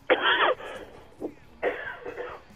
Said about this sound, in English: Anyway, I had a little coughing fit. He's there. He's getting old. No, just, I don't know. Must be that trail mix getting in my throat.